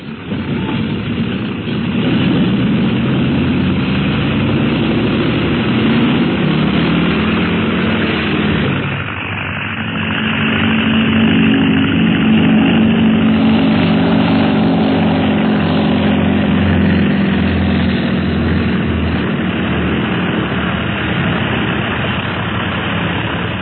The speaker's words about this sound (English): we find the plane just about to take off on the flight to Tibet.